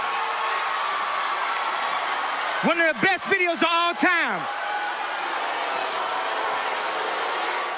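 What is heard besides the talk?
crowd reacting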